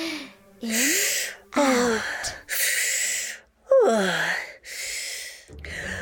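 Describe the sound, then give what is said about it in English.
Loud deep breaths drawn in and pushed out in a steady series, several audible inhale-exhale cycles, some exhales carrying a voiced, sighing tone, as a person deliberately controls their breathing. “I know I'm controlling my breathing right now, but most of the time my body just does that on its own.”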